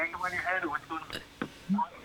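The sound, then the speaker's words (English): A radio plays in the background of a Skype call, its muffled voices and sound coming through the line steadily and fairly loud for about two seconds. “You got to turn your radio down.”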